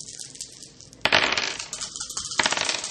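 Dice rolled for a stealth check in a game clatter across a hard surface after a second of faint hiss, a sharp initial rattle followed by several bright clicks and tumbling taps. No one speaks.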